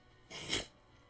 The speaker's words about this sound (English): It's like I want to sneeze, but it's not there.